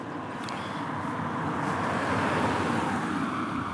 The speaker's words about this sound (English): More cars passing by.